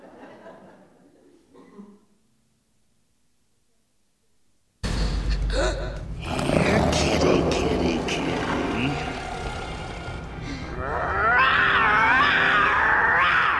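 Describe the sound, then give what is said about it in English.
After a few seconds of faint, quiet talk, a loud lion roar from a video being played bursts in abruptly and rumbles on for several seconds, deep and gravelly, with a rough, growling tail. “Let me show you what happens when the Lion of the tribe of Judah roars over our circumstances.”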